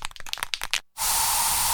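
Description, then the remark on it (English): A few quick rattling clicks, a brief pause, then a loud, steady aerosol hiss as bug spray is released in a home, continuing without a break until the end. “So you just used bug spray in your home.”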